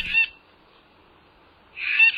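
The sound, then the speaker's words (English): Two harsh, raspy bird calls from a green jay, one short burst at the start and a longer one at the end, separated by near silence, clear. “In addition to the blue jay, we also have the brown jay, the gray jay, the Mexican jay, the pinion jay, several scrub jay species, the Steller's jay, and the spectacular green jay.”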